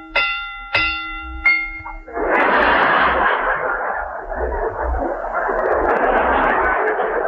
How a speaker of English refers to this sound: The next picture I recommend is Charlie Chan in St. Paul, or Mr. Moto in Minneapolis. This mystery gets 3.5 bells.